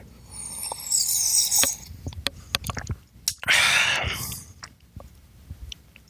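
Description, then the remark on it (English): Two airy slurping sips of coffee, each a short hissy rush, with scattered small clicks and swallowing sounds in between. No one speaks. “Let's take another sip here.”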